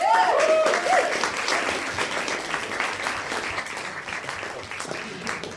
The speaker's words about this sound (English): A big round of applause for my dear friend, Nell Frizzell.